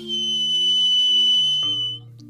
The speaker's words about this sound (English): The warrior blew a single shrill note on her acorn whistle.